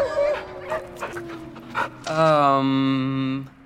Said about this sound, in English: Are those your wolves? They're mine as much as anything can be said to belong to me anymore.